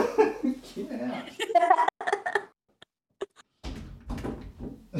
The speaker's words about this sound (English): But I need to shut that door because the dog has just barged in.